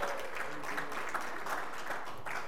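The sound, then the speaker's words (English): A studio audience on the game show Name That Sauce applauds steadily as an audience member is called up to join the host, a dense wash of many hands clapping at an even level throughout, with faint voices mixed into the noise. “Give Stephen a round of applause.”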